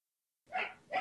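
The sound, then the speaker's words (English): A dog barks loudly twice in quick succession at someone walking by, the first bark following a brief silence and the second coming right after. “Someone was walking by. Therefore, we must bark our heads off.”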